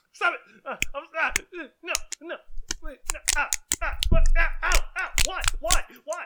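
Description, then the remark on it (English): Four snap bracelets slapped together slap sharply against someone again and again, about ten crisp smacks at an uneven pace, mixed with excited voices talking and exclaiming throughout. “He's hitting me with a snap bracelet.”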